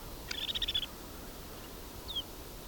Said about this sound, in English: I have 5, 10, 15, 20, 25, 30, 35, 43 snow buntings on a wire here.